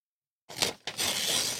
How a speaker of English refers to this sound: Could you flap all your papers around away from the mic? Could you rip the paper away from the mic? There you go. Right in front of it's good.